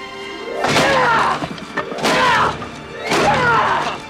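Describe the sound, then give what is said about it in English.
An enraged Daniel pounds a wooden training dummy with his fists in three loud, heavy blows about a second apart, each a sharp thud with a brief clattering rattle after it. No one speaks. “then all of a sudden, fucking Daniel just gets so fucking enraged, he beats the shit out of this fucking, yeah, wooden dummy.”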